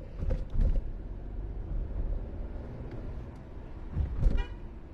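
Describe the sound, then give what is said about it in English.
A big pack of ATVs roars past on Broad Street in Edgewood, Rhode Island, in a steady, throaty engine rumble, with short horn toots breaking through near the start and again toward the end. No one speaks. “The ATV's invade Broad street in Edgewood RI”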